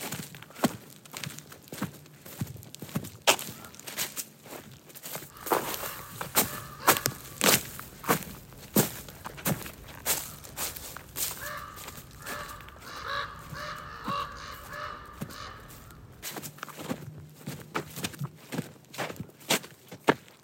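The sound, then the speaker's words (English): Steady footsteps crunch along a woodland path in the woods above the Noyo River in an even walking rhythm, with no one speaking. Partway through, a crow caws a few times over the steps. “On a walk in the woods above the Noyo River with activists and advocates”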